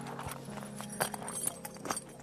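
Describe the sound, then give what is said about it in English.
Horse hooves clip-clop slowly and unevenly on a hard surface as a horse is prepared for a family walk, a handful of distinct knocks spread over a couple of seconds, with a faint background hum and no talking. “She is preparing her horse for the family walk.”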